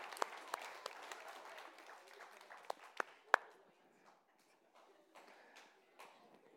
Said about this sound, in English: Okay, there we go. Yes, everyone give her a great round of applause.